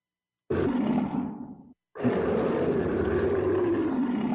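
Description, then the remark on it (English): Two deep, rumbling Godzilla roars, the 1984 version from the film Godzilla 1985, the first fading out before a short gap, the second longer and sustained with a gritty, growling tone and a slowly falling pitch. “That is 1984 from Godzilla 1985.”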